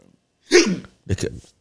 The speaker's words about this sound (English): Bro, I got the hiccups now because you want some nut shit.